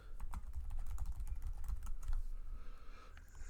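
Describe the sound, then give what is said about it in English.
Rapid, irregular clicking of keys on a computer keyboard, a steady flurry of taps over a low background rumble, with no voices. “What are you typing, everyone?”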